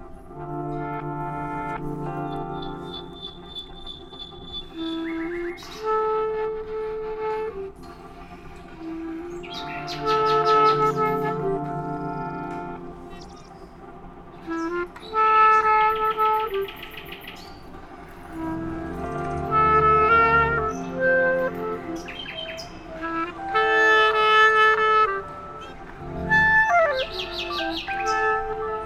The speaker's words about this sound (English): And so what I am experiencing, if and when I am, sometimes I too whistle with birds or whatever. And I always just think, so what could this possibly be like for the bird? You know, I wonder if we could hear a moment of your interaction with birds.